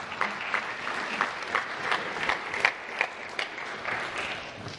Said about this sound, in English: Would you give them a round of applause for coming up here?